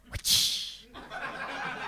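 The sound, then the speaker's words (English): A voice imitates a whip crack with the mouth: a quick sharp click followed by a loud, hissing 'tssh' that trails into a softer breathy rush, on its own. “Would you like one of my whips? You won't have to make that noise yourself yes, with your I mouth.”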